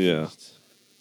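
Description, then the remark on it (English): A short, loud buzz like a bee, lasting only a moment, with a rough, droning tone that falls slightly in pitch before cutting off into a faint hiss. “Is there a bee around or something? I just heard that too.”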